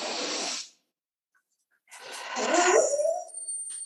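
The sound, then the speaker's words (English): A puppy takes a deep breath: a short, breathy inhale, a second of silence, then a longer, louder snuffling exhale with a faint whiny tone, no voices. “My puppy dog did that at the same time as you did.”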